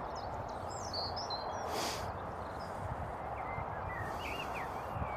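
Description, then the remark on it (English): Several birds chirp and trill in short, scattered phrases over a steady, broad rumble of road traffic, with a brief whoosh passing midway; no one speaks. Recorded while walking along a greenway, moving away from the road. “I'm just going to pause and listen to the birds for a second.”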